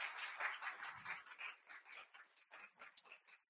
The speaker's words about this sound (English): I honor this wonderful man of God and the First Lady. You have two jewels here, phenomenal pastors. What God's done here is a miracle. Let's give a round of applause for the pastor.